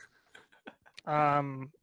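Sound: clicking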